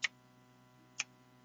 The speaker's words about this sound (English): You keep living, and the clock keeps going, and it keeps ticking away. It never gets slower, but you may.